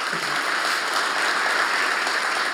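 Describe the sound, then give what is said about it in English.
A church audience at a Sunday service claps steadily to welcome people watching online, a dense, even wash of many hands applauding at a constant loudness for the whole stretch, with no voices rising above it. “So would you please, in person, welcome everybody online. And if you're at home, you could clap too.”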